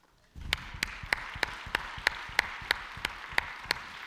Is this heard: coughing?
no